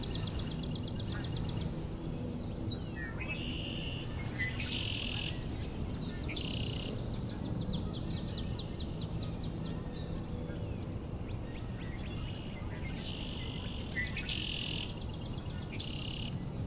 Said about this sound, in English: So our swamp sparrows are at it again.